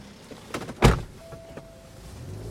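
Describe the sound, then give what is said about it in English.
A boar carcass is heaved into a large shallow bin in the back of a car: a couple of soft knocks, then one loud, dull thud, fading into quiet rustling and a faint hum. “Sakura drags the boar to her car and heaves it into a large shallow bin in the back”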